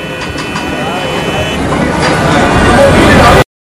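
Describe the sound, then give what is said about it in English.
A loud, dense wash of city street noise: rumbling traffic and engines mixed with an indistinct murmur of crowd voices, steady and continuous before cutting off abruptly. “Think Times Square. Billboards flashing all around, cars honking, bikes whizzing by, and people everywhere, some dressed up like superheroes or cowboys to get attention.”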